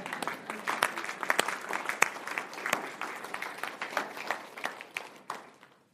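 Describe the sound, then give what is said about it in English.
A group of people clap for those going to Haiti as they come up, steady, overlapping applause with sharp hand claps peaking now and then, sustained for several seconds before tapering off at the end. “Should we clap or something?”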